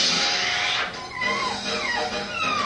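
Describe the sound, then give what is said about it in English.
A sad puppy whimpers in a series of thin, high, downward-sliding whines, steady over a hiss of background noise, with no talking. “Oh, see, the puppy's sad.”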